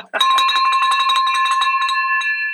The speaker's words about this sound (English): I'm just excited. I'm ready to ring this bell.